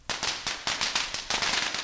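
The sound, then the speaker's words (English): A rapid, irregular string of firecrackers bursts, sharp loud cracks piling over one another in a continuous crackling barrage with no voices. “At another boat, a guy lights a box of crackers and covers his body in the storm of sparks, which showers his head, neck”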